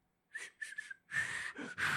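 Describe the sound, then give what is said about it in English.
Several breathy, airy bursts of a failed whistling attempt, mostly rushing air with only a faint wavering tone, fairly loud, getting longer and noisier toward the end. “I can't whistle, obviously.”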